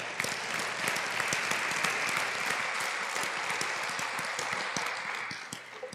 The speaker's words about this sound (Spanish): Let's give the Lord another clap offering. Vamos a dar un aplauso al Señor.